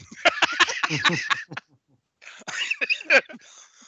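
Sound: coughing fit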